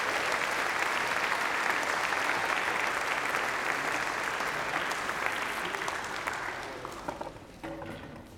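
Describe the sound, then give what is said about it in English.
A church crowd at First Pres applauds its readers and actors after a scripture reading, with steady, dense clapping that holds strong for several seconds, then thins out and tapers off as a few scattered claps and faint voices remain at the end. “Let's give our readers and actors a round of applause.”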